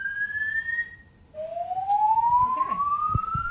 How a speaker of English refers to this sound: So we're interrupting this interview. There was a fire alarm that went off at the JW Marriott during the Polestar conference as we recorded the interview.